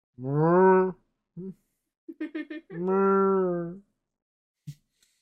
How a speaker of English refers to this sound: I love the cows. They got the cutest sound.